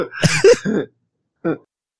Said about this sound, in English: Oh, God, I just coughed in everybody's ear, and I apologize. I was trying to mute it and double punched it. I do apologize.